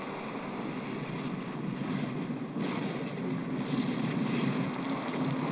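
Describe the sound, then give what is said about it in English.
Heavy surf from a 50-year storm roars continuously, with closed-out waves crashing and swelling in a dense wash of noise, mixed with gusting wind and no voices. “You finally get your waves and it's totally closed out.”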